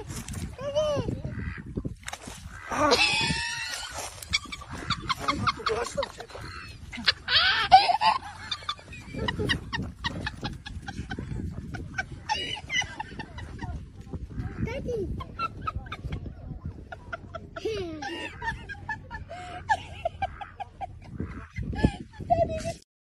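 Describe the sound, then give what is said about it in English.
A Cayuga duck quacks repeatedly, loud, in uneven bursts of harsh honking calls, with some indistinct voices mixed in underneath. “That's a Cayuga, by the way.”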